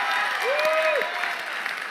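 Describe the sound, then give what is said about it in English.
An audience at a Chi Alpha gathering claps for the guitar player in a steady, dense wash of applause that fills the whole moment, with a brief whistle-like tone rising and holding over the clapping. “our beautiful guitar player, but let's give him a round of applause just for his handsomeness.”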